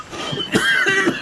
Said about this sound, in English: Oh, God, that is a natural cough as well.